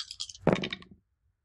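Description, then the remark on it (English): Gothic dice clatter across a table in a quick burst of hard clicks and rattles lasting about a second, fairly loud, then silence. “Okay, I need to not roll with these dice anymore.”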